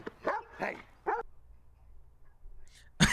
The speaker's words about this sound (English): It barked at him, and he jumped.